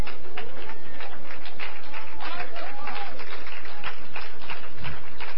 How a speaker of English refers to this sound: Come on. Would you clap your hands, all you people?